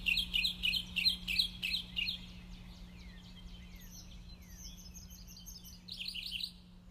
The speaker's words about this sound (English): And lastly, but certainly not leastly, is my dear friend Gabe Lyons, who sent this beautiful recording of birds, and I just love this, and it felt like the perfect fit for this song.